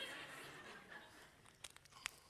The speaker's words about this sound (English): I'm going to take a sip of water right now.